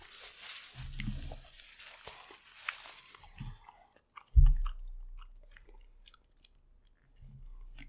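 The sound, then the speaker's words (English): Crisp, wet crunching of lettuce being chewed, with irregular bites and a sharper crunch partway through, then softer chewing continuing; no talking. “I'll eat some lettuce.”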